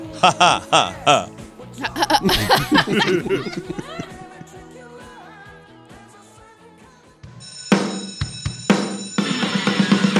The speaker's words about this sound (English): The bell means class is over here at Video High.